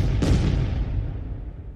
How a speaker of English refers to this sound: And then the cannons go off.